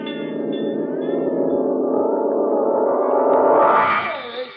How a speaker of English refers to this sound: That's the fire bell.